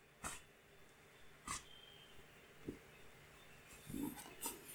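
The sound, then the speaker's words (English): A toy robot dog lets out five short, sharp barks at uneven intervals of roughly a second, each a brief crisp burst, fairly quiet, with no one talking. “With his really, really annoying bark.”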